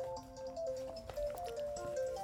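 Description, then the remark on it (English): A mobile phone ringtone chirps out a quick melodic run of bright electronic tones, clear, with some faint clatter and background noise underneath. “Is that Gil's phone? That's Gil's phone.”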